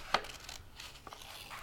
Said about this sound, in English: Super close-up of scissors traversing the edge of green paper as one hand turns the paper back and forth, creating a jagged edge. I just have to keep cutting the sawtooth.